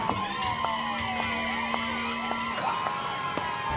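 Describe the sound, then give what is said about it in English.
Police car sirens wail in overlapping rising and falling tones as the police cars approach, loud and steady throughout, with a faint rhythmic knocking underneath and no one speaking. “The cops are almost here.”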